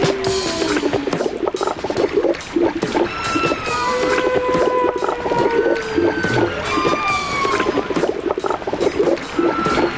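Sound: whale vocalizations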